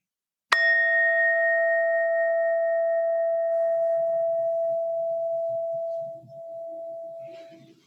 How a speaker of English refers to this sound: If you're ready, go ahead and close your eyes and begin to take a few deep breaths, preparing your mind for the sound of the bell.